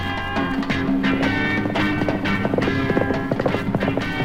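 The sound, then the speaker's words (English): The Phantom's white horse, Hero, gallops along jungle trails toward a pygmy village at a steady, rapid clip, its hoofbeats drumming in a quick repeated rhythm, loud, with a sustained tonal background underneath. “Mounted on his magnificent white horse, Hero, the Phantom races along jungle trails toward the village of his pygmy friends.”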